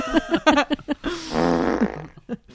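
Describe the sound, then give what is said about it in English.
A loud fart sound effect: a few short sputtering bursts, then a long, rumbling, buzzy blast that trails off, with a brief final puff at the end. “Her butt roared.”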